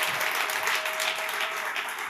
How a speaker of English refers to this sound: Would you just give her a round of applause?